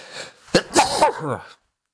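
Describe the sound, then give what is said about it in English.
A single loud sneeze: a quick sharp intake, then an explosive burst that trails off into a short voiced exhale before silence. “Apologies. That sneeze is staying in.”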